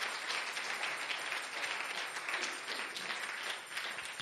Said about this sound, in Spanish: Dame fuerte el aplauso al Señor. Fuerte, póngase de pie.